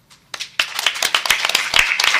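audience applause

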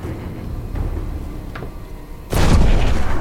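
explosion

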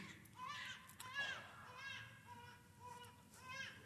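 newborn baby crying

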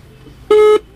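phone dial tone

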